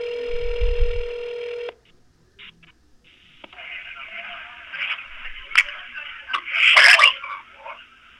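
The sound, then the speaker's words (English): A loud, steady telephone tone sounds for under two seconds, then cuts to a thin, hissy phone-line connection with scattered clicks and faint, muffled noises. “But I never heard back, and I waited a week, and I decided to follow up. But this time, someone else picked up the phone.”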